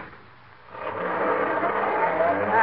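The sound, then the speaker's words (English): A car engine starts quietly, then swells and revs steadily louder as the vehicle pulls away, its broad motor hum filling the moment with no voices. “You'll get just as much fresh air and exercise riding in this car as you would walking.”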